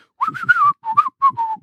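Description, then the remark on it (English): A person whistles the opening theme to the Gary Shandling Show, a bright, bouncy melody in three quick phrases, the notes sliding smoothly between pitches, with no talking around it. “I'm almost to the part where I begin to whistle.”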